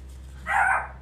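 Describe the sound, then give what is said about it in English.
A female dog gives a single short, moderately loud bark over a low steady background hum; no one speaks. “That's my dog.”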